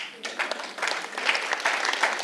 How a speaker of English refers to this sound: I think we should give God a clap for that.